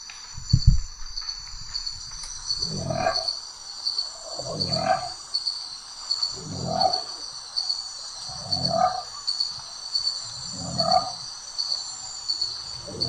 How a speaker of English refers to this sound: I mean, the crickets make it sound like it's by water, so it kind of sounds like a bullfrog.